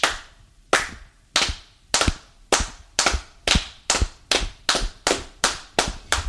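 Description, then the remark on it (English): Sharp, synchronized claps in a steady rhythm, about fourteen in all, gradually speeding up, each clap crisp and loud with a short ringing decay, and no voices. “You know, this kind of almost, I don't know what how to say it, like a chant, it was just a rhythmic clap that was all synchronized.”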